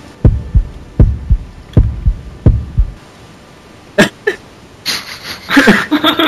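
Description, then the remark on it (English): A heartbeat sound effect: four deep, muffled lub-dub thumps in a steady rhythm, followed by a few sharper, brighter noises after the beating stops. “That was a heartbeat sound effect, but, you know, I mean, it could get better, you know?”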